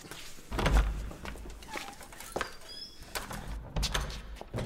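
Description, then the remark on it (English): A heavy door is opened with a low thump, then a few clattering knocks and a second dull thud, as faint birdsong chirps in the background. No one speaks. “No, I advise you open the door. Now.”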